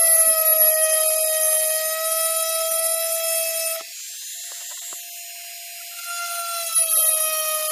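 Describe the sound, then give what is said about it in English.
A rotary burr, used at its very tip, whines steadily at a high, sustained pitch, dipping briefly in tone and loudness midway as it grinds against a gourd practice piece, then rising again. No one speaks. “And again, when you're using the fill-up point, don't add too much pressure. Just let the bird do the work.”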